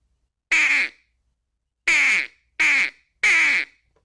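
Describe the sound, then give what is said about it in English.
Four loud, nasal quacks from a duck call, clear: one on its own, then a pause and three more in quicker succession. No one speaks. “Yeah, one quack. Just one quack.”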